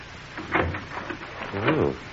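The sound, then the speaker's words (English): A greenhouse door is tried and pulled open: a muffled clunk of the handle, a few small rattles, then a brief wavering creak of the hinges over a steady background hiss. “Let's see if we can get in the greenhouse and have a look around. Try this door here.”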